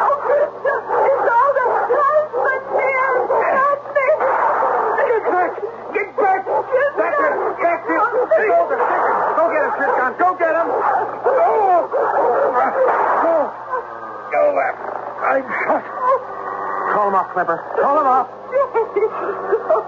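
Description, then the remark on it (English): A dog barks and yips excitedly in repeated bursts, loud, with whimpering mixed in, while voices talk over it throughout. “The dog.”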